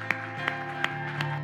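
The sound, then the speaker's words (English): An audience claps in unison for Jesus, four sharp, evenly spaced claps over a steady sustained musical tone, with a busy crowd murmur underneath. “Come on, let's give Jesus the greatest hand clap.”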